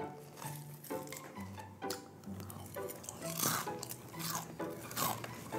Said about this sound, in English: Could you chew any louder?